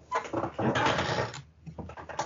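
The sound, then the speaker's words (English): A loud, scraping rustle with some squeaky tonal edges runs for over a second as something is dropped, then fades; after a brief lull, a few softer creaks and knocks follow from a squeaky chair. “Sorry, I dropped something, and now you got to hear my squeaky chair right at the end of the show.”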